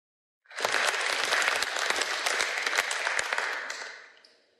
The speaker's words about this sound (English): Give everyone a round of applause there, folks.